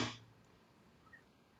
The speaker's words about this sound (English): And then I think the alligator was like a big snap.